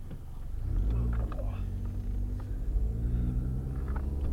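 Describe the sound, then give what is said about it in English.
A car engine hums low and steady from inside the cabin, its pitch shifting slightly as the car slowly turns, with a continuous rumble throughout. “This car's turning radius is horrible”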